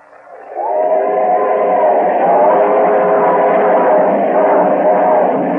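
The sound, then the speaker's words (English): A passenger train bound for Branson, Missouri, in 1930 rolls steadily along the rails, a continuous rumbling roar with a faint tonal hum that swells in quickly and holds at an even, fairly loud level throughout. “Finally, October 14th, 1930, William Simpson and Harry Green, two Lamar police officers, got on the train bound for Branson, Missouri.”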